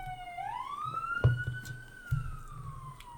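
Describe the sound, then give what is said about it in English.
An emergency vehicle siren wails steadily outside, its pitch sweeping up and slowly easing down as it passes, with low rumbling thumps and background noise underneath. “Anyway, there was a siren, as we were saying.”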